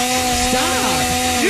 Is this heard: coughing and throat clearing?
no